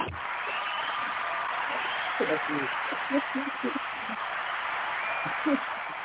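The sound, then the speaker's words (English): A steady wash of crowd noise fills the whole stretch, dense hissing applause-like clatter with occasional shouted voices and whoops poking out above it, sounding muffled and narrow like a low-quality recording. “The people yelling for you.”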